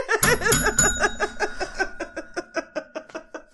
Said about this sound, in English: The bell's a good thing.